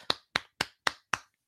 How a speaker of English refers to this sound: And it's once again Casey Zizekas on a great breakout play by Grace. His first assist of the year. Clap it up. Round of applause for Thomas Grace.